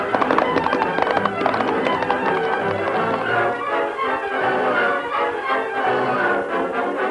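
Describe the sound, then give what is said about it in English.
A horse gallops off with rapid, drumming hoofbeats, loud at first, then continuing steadily beneath a swell of background music. No one speaks. “Billy took one last look at his newly discovered treasure, then ran to his waiting horse.”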